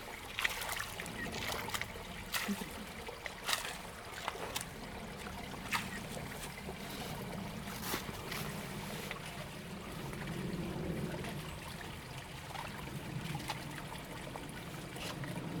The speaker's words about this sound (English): Well, it's just leaf debris and it's going to flow really well. He's pushing the leaves out of the way so the creek gets some action.